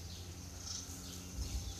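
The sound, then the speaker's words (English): Faint birdsong, thin high chirps trickling along over a steady low outdoor rumble, with no voices present. “Look, all the birds enjoying the nature, but they don't disturb each other.”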